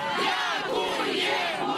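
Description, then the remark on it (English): A dense crowd of locals roars and shouts in sustained jubilation as they mob Ukrainian troops, many voices overlapping into a loud, continuous wall of cheering with excited cries rising above it. “Ukrainian troops are being mobbed in jubilation.”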